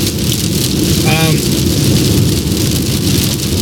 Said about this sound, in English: I feel like I gotta talk louder because of the... Yeah, probably. Stupid rain.